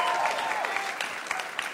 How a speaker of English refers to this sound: You guys are cool with that? SF people? Cheering.